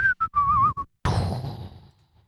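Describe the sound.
A person whistles a short tune of four quick, clear notes, then stops as a sharp scratchy burst flares up and fades into a soft hiss.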